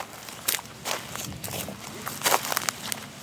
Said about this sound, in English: Crossfade with walking sounds, footsteps in a field.